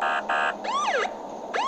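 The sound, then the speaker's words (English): A police car siren gives a short, loud burst as police pull a vehicle over: two steady electronic honks followed by swooping rising-and-falling whoops, with no one speaking. “It looks like we're being pulled over by the police.”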